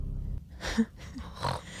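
Two rough, breathy snores, each a short rasping inhale with a low rumble underneath, separated by a brief pause. No talking.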